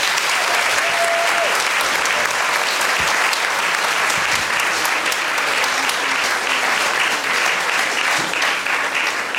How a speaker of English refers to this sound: Before he does, please give a big round of applause to all my guests this morning, the wonderful Pappy's Fun Club, Josh Howie, Cornelius Lycett, and Wilson Dixon.